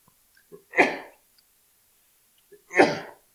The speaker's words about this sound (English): I'm going to sneeze.